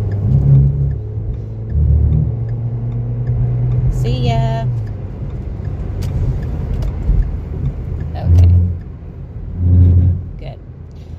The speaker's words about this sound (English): Oh boy, hold on. I gotta pass this truck.